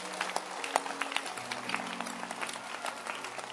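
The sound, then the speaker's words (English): An audience claps steadily, dense overlapping hand claps forming a continuous crackling wash for several seconds, with a faint low hum underneath. “So, ladies and gentlemen, clap your hands, for money is the answer.”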